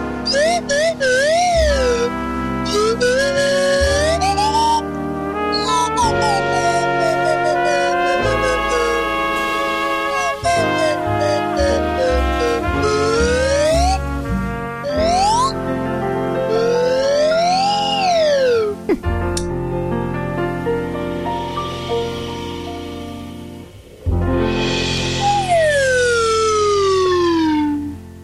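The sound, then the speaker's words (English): A slide whistle, a swan whistle, plays a long run of swooping glides, pitch sliding up and down in quick wavering bends and long sweeps, loud over a steady rumbling backing bed, played to close out the No Agenda show. “You want to slide whistle us out, buddy? I could do that. My swan whistle.”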